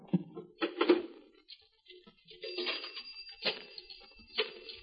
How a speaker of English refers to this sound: As I dialed the paper